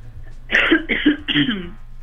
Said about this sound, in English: Oh, you're quite all right. Go for a cough if you need it. Oh my gosh.